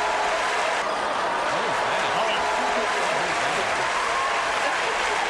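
Steady crowd applause fills the whole stretch, a dense, even wash of clapping with some rising and falling vocal cheers mixed in partway through.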